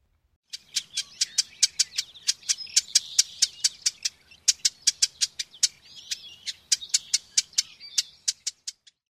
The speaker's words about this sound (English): Next is the call of the marsh wren. Notice its buzzy quality.